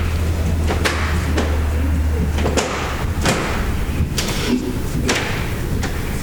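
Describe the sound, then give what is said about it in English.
A rapid series of heavy thuds and bangs as doors are deadbolted and slam shut one after another, roughly a dozen impacts at uneven intervals over a constant low hum and background noise. “What the fuck are we doing there? Are we deadbolting 15 doors?”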